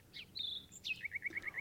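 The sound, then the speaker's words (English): Bird calls and chirping: a quick downward whistle and a held high note, then a rapid, evenly spaced run of about six short chirps. Fairly soft, with no talking. “Random bird attacks.”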